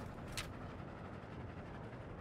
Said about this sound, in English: As the train keeps moving along the track, Elmo sees light sparkling on a long, winding river.